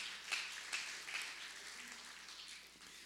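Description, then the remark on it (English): A crowd applauds a man at the back steadily for about three seconds, a soft, dense wash of many hands clapping with no single claps standing out and no voices over it. “Let's give this guy a round of applause in the back there.”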